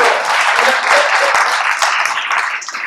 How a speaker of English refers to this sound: You can clap for him too. Come on.